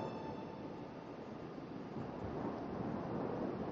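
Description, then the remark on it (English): Steady rushing surf washes along a shoreline, a continuous broad hiss of water that swells slightly louder toward the end, with no voices present. “You can hear the ebb and flow of the water.”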